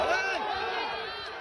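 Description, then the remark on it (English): A large crowd of protesters in Shanghai, China, chants together in a dense, sustained roar of many voices, with rising and falling vocal tones layered over steady noise, holding at a fairly even loudness throughout. “Communist Party in Shanghai, they chant and police move in.”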